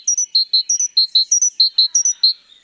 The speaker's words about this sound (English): This is the song of a great tit, one of the most familiar sounds of the European spring. The great tit, a relative of our chickadee, is common in the forests of Europe. Its song is more varied than the simple whistles of our chickadees.